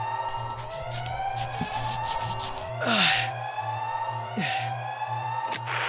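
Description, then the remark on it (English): Electronic alarms blare continuously in overlapping, rising and falling tones, with a steady low hum beneath and a couple of sharp bursts of noise cutting through. “Shut off the damn alarms.”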